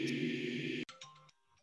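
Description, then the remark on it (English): A loud electronic segment timer, the '105 timer', goes off: a harsh, sustained buzzing tone for most of a second, then a couple of short tonal beeps before it cuts out. No one speaks. “No, that was the 105 timer, my man.”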